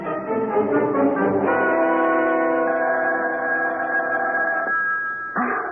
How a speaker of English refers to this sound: Wake up. The phone.